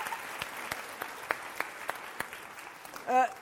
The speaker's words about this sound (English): Very good. Big round of applause for